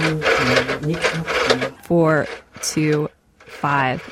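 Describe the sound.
A rotary phone dial whirs and ratchets for a couple of seconds under a woman's soft murmuring, then she speaks a few short phrases with brief pauses between them.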